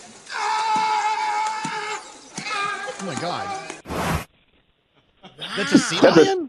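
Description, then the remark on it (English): A sea lion in a YouTube video lets out loud, raspy screaming bellows, said to sound like Tom Hanks yelling in Castaway, in several long bursts, slapping the water between them, with a person briefly exclaiming. “That's a sea lion screaming like Tom Hanks.”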